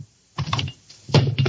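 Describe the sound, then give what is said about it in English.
A hammer drops out of an umbrella opened in the house and lands on a man's good foot: a rustling clatter followed by a heavier thudding knock, two short bursts with no voices. “Oh, my foot! Daddy wondered where that hammer was.”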